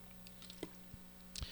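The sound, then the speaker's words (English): A few quiet, wet sounds of someone sipping water: small mouth clicks and a soft slurp-and-swallow near the end, with no talking over a faint steady hum. “So what I've got to do before I do that is you got to give me a chance here to take a little sip of water.”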